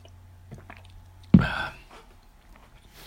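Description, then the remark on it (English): A single sip of water: a sudden wet slurp and gulp right at the microphone, fading within half a second, with near-silence around it and no talking. “I'm going to sip my water.”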